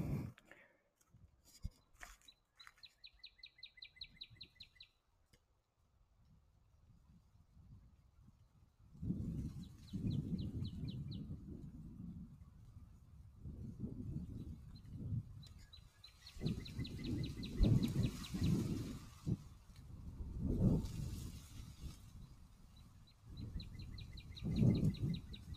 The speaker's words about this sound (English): Listen to the wind. We will go over near a bush that rustles in the wind. When it gets windy.